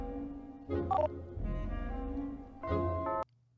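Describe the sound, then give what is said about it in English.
A quick series of electronic keypad tones from a phone being dialed to call a pizza place, fairly loud, before cutting off abruptly into a faint low hum. “We get Big Al's Pizza call?”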